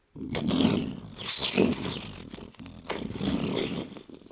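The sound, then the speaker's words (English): A voice imitates a roaring storm off in the distance, a dark storm building on the horizon: two long, rough, rumbling roars of breathy noise, each lasting about two seconds, split by a short pause, moderately loud and with no other sound. “And it's a storm in the sky, but everything below it that's moving forward is just becoming completely shadow.”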